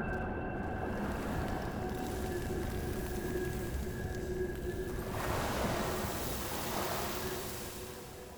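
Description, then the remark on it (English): Ocean waves wash and hiss in a continuous roar, swelling in the middle and then drawing back and fading slightly at the end, with a faint steady hum underneath and no voices. “The waves ran back before them, into the sea.”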